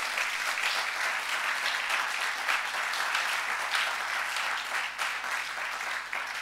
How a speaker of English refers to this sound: Oh no, if you want to clap, go ahead.